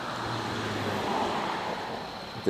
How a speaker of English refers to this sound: The SUV. We're outside, so all the dingleberries are driving past our house now late at night. It's a convoy. It's a convoy of crazies.